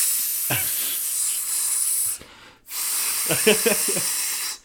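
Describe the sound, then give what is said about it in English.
A voice imitates a long, steady hiss of air escaping from the busted valve of a flat spare tire being pumped up at a service station, broken by a brief gap, with short throaty bursts mixed into the hissing. “So then, I jump in the other car, take the spare to the service station to pump it up, hear the...”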